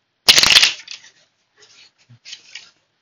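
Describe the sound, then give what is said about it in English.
A deck of tarot cards being shuffled for a tarot reading: a loud riffling burst at the start, followed by softer, scattered card slides and flicks trailing off. “So I'm going to shuffle.”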